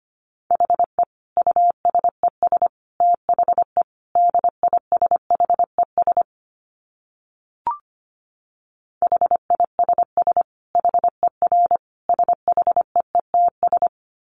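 Rapid Morse code at about 25 words per minute: a single steady mid-pitched tone keyed in quick dots and dashes, two long runs split by a silent pause with one brief click, no voices.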